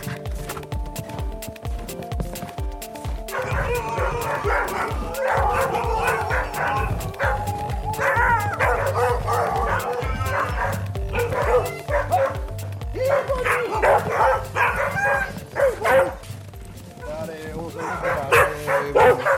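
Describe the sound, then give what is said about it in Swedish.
A chorus of husky sled dogs in a kennel yard right beside a house in Åre, Sweden, barks and yips continuously, many excited voices overlapping in a dense, energetic racket, with occasional whimpers and a person speaking amid the noise. “Innan vi går in i huset som man har byggt själv besöker vi hundgården som ligger precis intill huset.”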